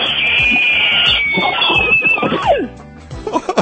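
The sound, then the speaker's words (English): A horror-film actress lets out a loud, piercing scream, holding a shrill note for a couple of seconds before it slides downward in pitch and breaks off. “I'm not quite sure what makes her the scream queen, but go ahead and adjust the levels on your radio if you need to right now as she gives us one of her screams.”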